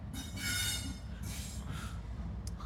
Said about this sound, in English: And I'm here doing a podcast by a train. Yeah, I'm podcasting by the train. I'm podcasting by the train. And it's rolling on by the train.